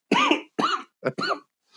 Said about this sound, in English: Oh, boy. Is that the smoker who's coughing?